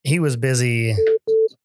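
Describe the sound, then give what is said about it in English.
A phone rings for an incoming call from Rick, who then hangs up: two short, steady electronic tones in quick succession, fairly loud, right after a brief voice-like sound. “There's Rick calling me and then he hung up.”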